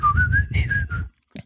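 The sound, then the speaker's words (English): Someone whistles a brief, wavering tune, trying to recall the whistle part of a song, several connected notes gliding up and down for about a second, then stops; a faint breath or rustle follows. “What's the whistle part? Can you whistle it?”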